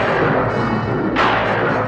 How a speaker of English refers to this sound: There's thunder. There's lightning.